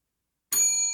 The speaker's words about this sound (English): Like, have you ever seen me strike a bell?